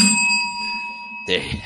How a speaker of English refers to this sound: Yeah. I got the Wizdumb bell.